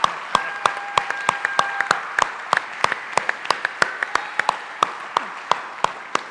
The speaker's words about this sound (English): So I'm gonna ask that you guys give them a thunderous round of applause for graduating.